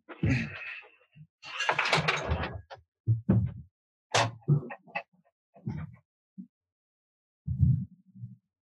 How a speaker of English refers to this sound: I hear my 6-year-old knocking on my door.